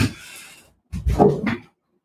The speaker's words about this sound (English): Hold on. My cat is like destroying my door right now. I'll be right back.